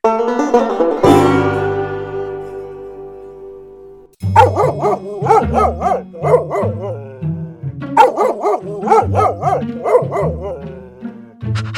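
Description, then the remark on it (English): A dog barks and yips in a quick, uneven run of short, bright, loud calls, after a sustained musical tone rings and fades at the start. “Let's go talk to the dog.”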